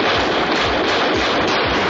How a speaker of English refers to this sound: And another explosion. That was laser mission.